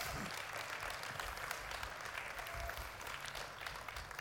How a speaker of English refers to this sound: I think you can clap, yeah?